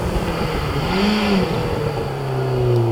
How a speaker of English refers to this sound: Oh, it was just an MX5 with a stripe and a noisy exhaust.